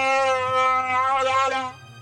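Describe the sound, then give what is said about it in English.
Chewie the Wookiee roars in the Millennium Falcon cockpit: one loud, drawn-out warbling howl lasting under two seconds, its pitch wavering up and down before cutting off, leaving only a low hum behind. “Chewie doesn't like it. He roars.”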